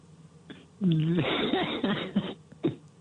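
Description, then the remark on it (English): A male caller coughs through a thin, band-limited phone line: a harsh, throaty burst followed by a few shorter catches. It sounds muffled. “Was he coughing or crying then?”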